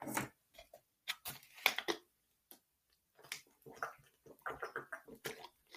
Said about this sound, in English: Now let's talk about the Lakers and get a drink of water real quick.